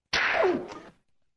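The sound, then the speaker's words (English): A single loud slap sound effect: a sharp, whip-like smack with a brief swishing tail that fades within a second, heard alone with no voices around it. “Is that a Is that a slap sound effect? Yeah.”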